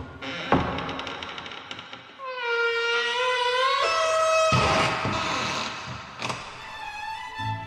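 A door opening sound effect: a sharp clunk, then a long, loud, creaking squeal that bends in pitch, followed by a couple of heavy thuds. No voices.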